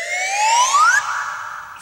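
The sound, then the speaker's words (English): A slide whistle in the score of a 1985 Roger Moore film swoops smoothly upward in pitch for about a second, then holds a bright, steady higher note before cutting off abruptly. Loud and clear, with no voices. “Same with the slide whistle.”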